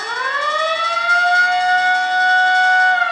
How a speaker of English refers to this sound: These sounds were invented to accompany silent movies, to bring a silent movie to life, using not only the organ, but the sound effects. So we have sounds like the Chinese gong. We have boat whistles, doorbells. We have fire bells and a siren.